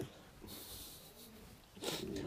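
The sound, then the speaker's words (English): A person imitates gasping for air, with two harsh, breathy gulps, the second one louder and more strained. “A gasping for air.”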